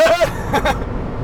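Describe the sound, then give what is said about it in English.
A steady, low rumble of road and engine noise fills a moving car's cabin on the way to Maryland, with a brief high squeak at the start and faint vocal sounds over the drone. “We're doing a podcast in the car.”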